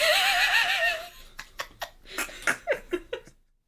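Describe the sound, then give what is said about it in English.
A voice imitates a creature with a high, wavering whinny-like cry, then a run of short, raspy, phlegmy throat bursts that fade out, fairly loud with no speech. “I'd say put that on the merch, but I don't know how we would articulate that sound, so. It's a boy! Parentheses, phlegm.”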